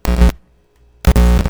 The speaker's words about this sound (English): There's something going on with this cord. Maybe I also hear like some static. Zzz. Yeah, I hear static. Big time.